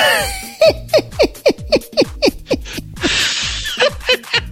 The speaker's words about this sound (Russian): Боже мой, что это? Это я дышу в микрофон. По-моему, хорошо получилось.